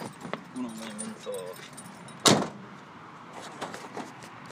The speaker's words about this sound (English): He's locking up the car now.